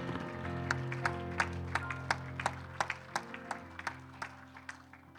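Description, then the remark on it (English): An audience claps in praise to the Lord before being seated, a steady, uneven beat of sharp, fairly loud claps ringing over sustained, held instrumental chords; no clear cheering stands out. “Give the Lord a hand clap and a shout of praise before you're seated tonight.”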